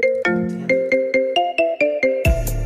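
signal or alarm, marimba phone ringtone

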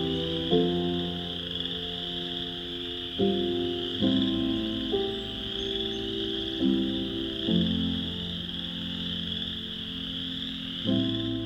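animal, chorus frogs calling

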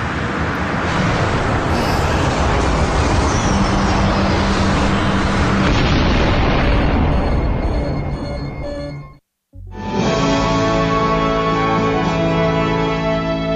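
sound effect, spaceship crash landing

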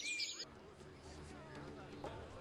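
bird, bird chirping sound effect

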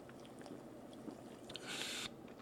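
food or drink, sipping sparkling water

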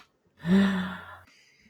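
human body sound, a gasp

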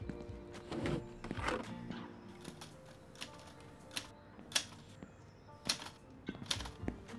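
machine, typing on a typewriter

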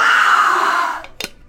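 human body sound, scream

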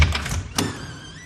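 household object, door being pushed open

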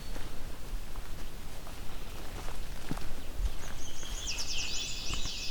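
bird, yellow warbler singing

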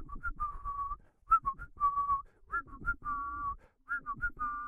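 human body sound, person whistling

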